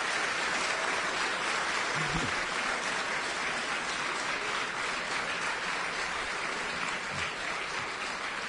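Sustained audience applause fills the whole stretch, a dense, steady crackle of many hands clapping at an even loudness with no voices over it.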